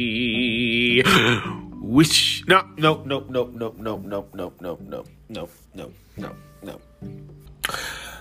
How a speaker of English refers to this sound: Let me clear my throat. Here we go.